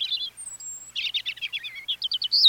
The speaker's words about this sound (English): While a bird's eye view lets a migratory songbird like this European robin keep track of important landmarks along its route, a special protein in its eyes might let it see Earth's magnetic field.